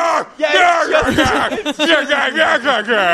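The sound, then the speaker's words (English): Two male voice actors scream and bellow over each other in loud, continuous, strained roars, voicing two big rhino-like Digimon, Monochromon, fighting, overlapping with no words. “And that's when they, at the very beginning, when those two big, like, rhino Digimon, like, Monochromons were fighting. And they're just screaming at each other.”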